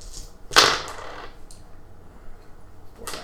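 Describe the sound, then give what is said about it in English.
A sharp clatter of dice being rolled for one last character, tumbling across a hard surface, loudest at first and quickly settling, followed by a couple of softer clicks, with no one talking. “I have to roll for one last guy.”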